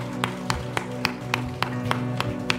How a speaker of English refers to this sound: Thank you guys so very much. Give all of our mothers a round of applause this morning.